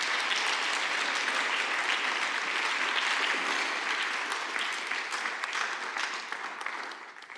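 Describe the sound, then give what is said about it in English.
An audience claps steadily for several seconds for people who shared, a dense, even patter of many hands that stays strong before gradually thinning and tapering off toward the end. “Can you give them a round of applause for sharing?”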